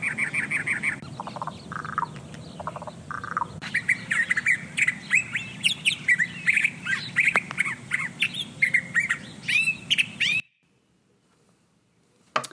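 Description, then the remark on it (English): A chorus of Canada geese honking, harsh repeated calls overlapping in an uneven rhythm over a low background rumble, loud, then cutting off abruptly into near silence. “today are going to talk about the Canada goose.”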